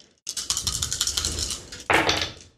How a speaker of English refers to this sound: Roll 7 dice for damage.